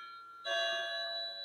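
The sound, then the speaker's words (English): A clock chime strikes the hour once and rings on with a bright, layered metallic tone that holds steady and barely fades, heard alone with no voices. “Oh my god, it's been an hour. I can hear your clock.”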